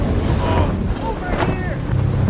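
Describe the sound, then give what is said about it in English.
A storm at sea surrounds a ship: steady roaring wind and churning waves fill the space, with faint whistling gusts rising briefly above the constant low rumble. “One of the sailors told me about storms like this.”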